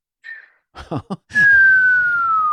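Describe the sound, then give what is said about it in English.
A person whistles a long, steadily falling tone, mimicking a nuclear bomb dropping through the air. It comes loud, preceded by a few short breathy puffs. “I would do the whistle of the nucleon.”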